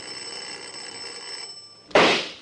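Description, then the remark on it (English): A bell rings continuously with bright, high metallic tones for almost two seconds, then is abruptly cut off by a sudden loud, sharp pistol shot from inside a house. No one speaks. “Make with that bell again”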